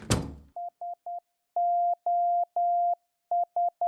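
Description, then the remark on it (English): A steady mid-pitched tone beeps out the Morse code SOS signal: three short beeps, three long ones, then three short again, clear and alone after a brief noisy burst at the start. “Well, I see by the old Morse code signal, endlessly broadcasting SOS cries for help into the ether, it's time to wrap it up for today.”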